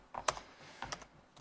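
Quick typing on a computer keyboard: a handful of sharp, clicky keystrokes in uneven bursts, fairly quiet, with no voices present.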